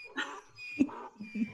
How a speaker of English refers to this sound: I hope the chat can hear this. I hope it's loud enough for them to hear these suffering donkeys.